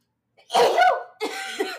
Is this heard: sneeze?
yes